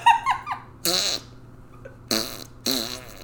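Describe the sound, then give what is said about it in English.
A quick squeaky whistle gives way to three loud, buzzy fart sound effects, the first one short and the last two longer and spluttering, each separated by a brief pause. “would be so much funnier with fart sounds as the punchlines.”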